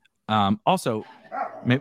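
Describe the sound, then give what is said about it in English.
Dogs bark in a quick cluster of three or four loud barks, tonal and yappy, with brief gaps between bursts and nothing else in the background. “These goddamn dogs.”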